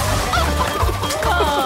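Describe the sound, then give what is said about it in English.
Chickens clucking loudly in quick, choppy bursts over a dense, busy mix of sound, with a crashing hit partway through; no one speaks. An opener option for Triple M Rush Hour's Chicken Run. “This is Triple M Rush Hour's Chicken Run.”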